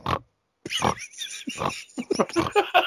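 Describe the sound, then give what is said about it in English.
A voice imitates a man's rapid, loud snoring, all inhale: a quick run of harsh, snorting inhales, about seven bursts in a row after a short pause, growing choppier toward the end. “Within minutes of him being asleep, dead, face first, on the fucking floor in the kitchen, you hear this rapid, loud snoring. And by rapid, I mean he's doing this.”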